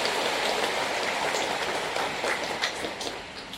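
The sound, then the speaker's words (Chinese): An audience in Shenzhen applauds to welcome visitors from the Catholic Church abroad, in a dense, steady wash of clapping with a crackling texture, holding an even level before easing off slightly at the end. No one speaks. “让我们掌声欢迎国外天主教的莅临深圳。”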